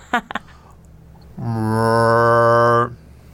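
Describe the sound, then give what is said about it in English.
A person imitates a cow with one sustained, fairly loud moo lasting about a second and a half, preceded by a couple of quick faint clicks. “I think I could do a cow.”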